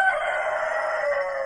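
A rooster crows in one loud, drawn-out cock-a-doodle-doo, a strained, raspy call holding a steady mid-high pitch throughout, with no talking over it.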